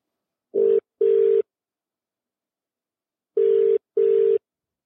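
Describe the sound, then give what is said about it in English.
A phone line ringing as a call is placed to a performer for a chat: two pairs of short, steady buzzing tones, a gap of about two seconds between the pairs, with no voices. “We're about to give Michaela Baranov a call.”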